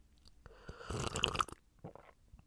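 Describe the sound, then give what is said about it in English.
A soft slurping sip from a cup of hot peppermint tea, a breathy burst lasting about half a second, followed by a few faint wet mouth sounds and a quiet swallow. “Whenever I need a little bit of comfort, let's have a little sippy sip, a little ASMR sip.”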